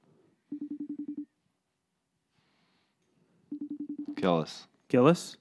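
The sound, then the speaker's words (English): An outgoing FaceTime audio call rings: a quick pulsed electronic tone plays twice, separated by a couple of seconds of silence, with brief voices cutting in near the end. “I like to call him FaceTime”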